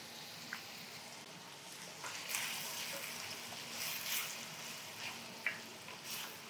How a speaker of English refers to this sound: All right, so I'm going to throw my pasta in.